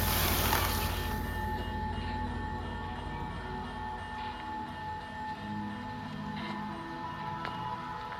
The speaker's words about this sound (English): The lights shut off. Bubbles stopped, and the last thing I saw before exiting was the train set crashing to a stop.